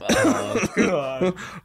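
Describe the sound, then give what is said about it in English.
A voice makes a few forced, throaty coughs in three quick voiced bursts, fairly loud, sounding like stifled laughter disguised as coughing, as when laughing in a church pew during a service. “It gets so bad that you're masking it with coughs”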